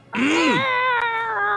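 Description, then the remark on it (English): A person vocally imitates a Star Wars TIE fighter's screech: one loud, sustained nasal wail, about a second and a half long, that swoops briefly in pitch and then holds steady, like a yowling cat. “That's my TIE fighter noise. it sounds like a you cat.”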